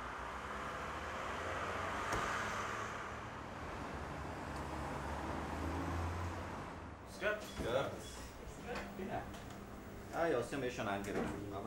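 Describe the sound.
A steady whoosh of tyres and road noise from a quietly driving hospital electric car, used to fetch urgently needed items from pharmacies in town, fills the first several seconds, then a voice starts talking over the continuing low rumble.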